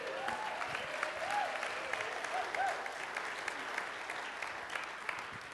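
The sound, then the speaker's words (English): An audience at a church gathering claps steadily for several seconds for the speaker's daughter as she comes up front, a dense wash of many hands with a few faint whoops or voices rising briefly over it, the applause holding level before easing slightly. “So she can come up here, and if you wouldn't mind clapping for her, that'd be awesome.”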